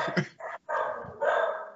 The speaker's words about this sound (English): Dogs are cool. Can you hear that? Yes. I could mute it. Yeah, they're all right. They're dogs, man.